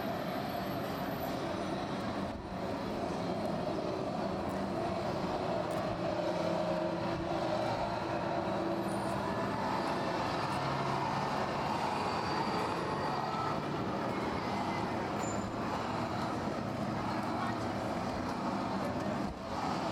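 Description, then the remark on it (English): A steady, dense roar of road traffic coming from outside a public library's window, with heavy trucks and cars rumbling past continuously; no one speaks, and the low engine drone never lets up. “And coming from the public library's window, there's also sounds of traffic and trucks and cars.”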